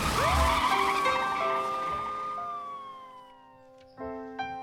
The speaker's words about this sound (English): He pulled the costume off Alfonso's broken body, put it on himself, jumped into the squad car. Floor it, Roy!